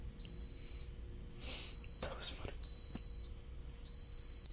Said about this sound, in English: Okay, so it has completed the test. It beeped a couple of times. There was no way to see on the app how close it was to being done. And the screen just went off.